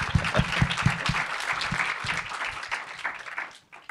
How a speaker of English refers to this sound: So I owe this to Peter, and thank you, Peter, for that. So Peter Becker, everybody, round of applause.